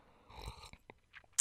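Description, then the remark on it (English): A quiet slurping sip of coffee from a mug, a drawn-in wet draw followed by a few soft mouth clicks and a sharp little clink at the end, with no talking. “I got my little coffee here. So excuse me while I take a little sip.”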